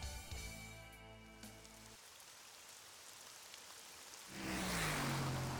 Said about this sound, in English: Darkness, as pitch as black, adorned by the sound of pouring rain, and the only light coming from anywhere is the occasional set of headlights passing down a two-lane highway.